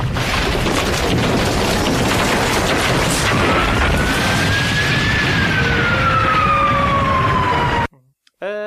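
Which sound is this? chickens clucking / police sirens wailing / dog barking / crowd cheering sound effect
police sirens wailing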